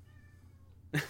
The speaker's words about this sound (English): Is that a kitty? he heard me say kitty. Kitty. So he's like, oh, wait, ma.